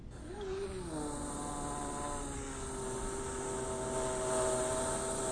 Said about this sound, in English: Well, bears don't howl. They can make noise that kind of similar when they're really scared. I'll play a clip of it real quick.